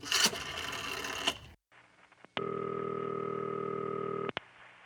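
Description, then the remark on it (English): A telephone being dialed: a burst of mechanical rattling and clatter, a short pause, then a steady electronic tone lasting about two seconds, starting and ending with sharp clicks. “The only thing that I needed was to make one quick phone call.”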